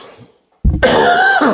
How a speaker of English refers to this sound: I have to cough.